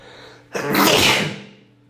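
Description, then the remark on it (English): A single loud human sneeze bursts out abruptly, a sharp onset followed by a breathy rush that fades over about a second. No talking. “That was one hell of a sneeze.”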